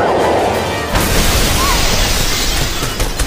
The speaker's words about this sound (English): Batman grabbed a hold of Vicky and fired his grappling gun sideways. The grappling hook wrapped around one of the lower gargoyles. Batman and Vicky swung and crashed into one of the cathedral's windows.